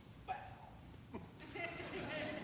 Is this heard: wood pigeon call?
no